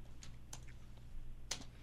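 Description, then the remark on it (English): A handful of quiet, irregular keyboard key clicks over a steady low hum, with one slightly sharper keystroke near the end and no voices. “My keyboard's working again.”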